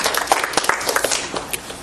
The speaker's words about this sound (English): We sure we can clap? Yeah, well, did I hear somebody clapping?